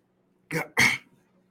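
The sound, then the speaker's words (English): A pair of hiccups in quick succession, fairly loud: two abrupt, breathy vocal jolts, the second slightly longer, with no talking around them. “Sorry, I got hiccups right now.”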